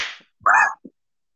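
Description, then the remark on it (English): A quick swishing whoosh, then a sharp, loud smack lasting a fraction of a second, followed by a tiny trailing tap. It sounds like a cartoonish slap effect with no talking. “You want a virtual slap? This is a virtual slap.”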